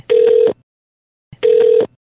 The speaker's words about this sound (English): Let's make a call.